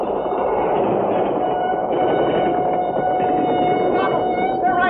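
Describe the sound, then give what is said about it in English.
Two roller coaster cars come around the last curve and roll steadily along the track into the platform, a dense, continuous rumble of wheels on rails with a faint, sustained metallic squeal running through it at an even loudness. “Up on the roller coaster. Two cars coming around that last curve.”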